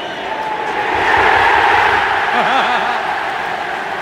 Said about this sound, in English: And 70,000 people shouting, "You Scouse bastards."